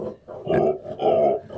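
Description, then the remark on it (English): Tazzy, a female pig, grunts in a few low, rough bursts, two longer throaty calls with a short pause between, fairly loud and with no talking over them; real sounds, her normal chatty voice, not upset. “Those are not sound effects. That's the real thing. The real thing. That's her being chatty.”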